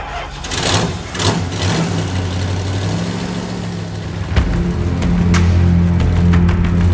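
A truck engine cranks with a few rough bursts, catches, and settles into a steady low rumble, then a clunk as it revs higher and pulls away, heading back to a madhouse, loud with no voices.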